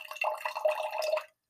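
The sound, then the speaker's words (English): A drink containing caffeine and creatine being poured from a can into a cup: a steady splashing stream lasting just over a second, pitch shifting slightly as it fills, then stopping abruptly. No one speaks. “Let's pour it and I'll take a peek too.”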